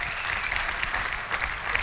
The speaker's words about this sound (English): Come on, give him a huge round of applause.